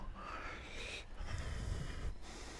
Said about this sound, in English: And generate the flow of your breathing. With your eyes steady, it makes flow possible. So suck the air in through your nose. Push it out through your nose.